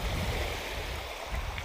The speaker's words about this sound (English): It's just a full sensory experience, you know, like the sand on your feet that's soft, and the seaweed, and it's like, wow. Then you hear the waves, you smell the iodine.